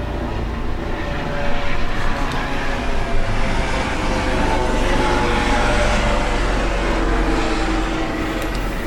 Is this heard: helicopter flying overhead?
yes